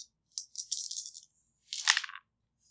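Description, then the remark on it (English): Dice clatter and rattle in two bursts, a longer rolling spell followed by a shorter one, crisp and high-pitched with a brief silence between, and no voices. “And I'm going to steal one of those dice from you.”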